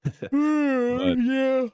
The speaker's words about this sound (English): Sorry, podcast. It's the first time I might have ever yawned on here.